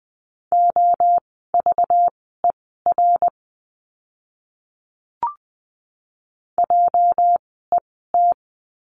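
Morse code practice words for a lesson on the letter J, sent as a steady mid-pitched tone at 20 words per minute, short and long beeps in quick groups separated by pauses, with a single soft click in the middle gap.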